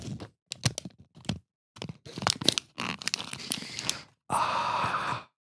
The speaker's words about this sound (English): I have some crinkly receipt paper.